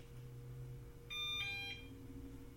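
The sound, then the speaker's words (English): A robot vacuum, switched on with the switch on its side, plays its power-on alert: a brief electronic chime, a couple of bright, steady tones stepping in pitch and lasting about half a second, over a low steady hum with no talking. “That is the tones to let you know that it is now on.”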